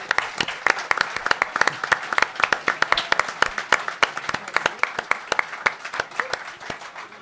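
A crowd breaks into sustained applause, many hands clapping in a dense, crackling patter that holds steady for several seconds before easing slightly toward the end.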